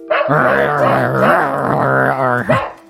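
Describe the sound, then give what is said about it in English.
A man leaning up to a wall growls like a dog to trick a creature in the wall: one continuous, loud rumbling snarl lasting a few seconds with a rough, throaty tone that wavers in pitch before cutting off. “… leans up to the wall and starts growling like a dog to trick this thing.”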